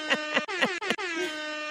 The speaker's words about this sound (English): Woo! Woo! Hello! Hip-hop air horns. Yes!